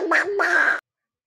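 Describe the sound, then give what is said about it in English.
A person imitates a cartoon duck voice, producing two quick raspy, nasal quacking bursts, then silence. “I will actually pay you if you could imitate this person. It is National Donald Duck Day.”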